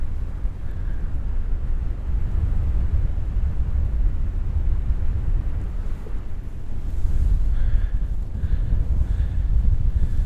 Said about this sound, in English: Oh, it's quite windy.